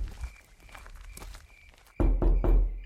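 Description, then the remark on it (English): Footsteps walk at a steady pace up to the door of a home in a gated community of multi-million-dollar homes, soft and muffled at first, then turn into three loud, heavy thuds toward the end, with no voices present. “We parked and approached the door.”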